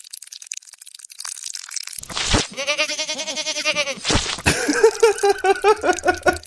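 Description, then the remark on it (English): A loud, wavering goat bleat plays, then the same bleat runs in reverse with its noisy attack reversed, giving an odd mirrored pair of bleats with no talking. “So I mean, creating a goat and killing a goat, they're evidently the same thing.”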